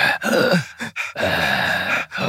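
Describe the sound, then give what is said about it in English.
Loud breathing in several heavy, breathy bursts with a gasping, sighing edge, separated by brief pauses, with no words spoken. “I suddenly heard my own breathing.”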